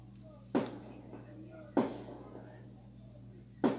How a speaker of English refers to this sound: Gunshots. Gunshots and loud talk. Hold on. Few blocks away. Nothing too out of the ordinary. This neighborhood is a little crazy.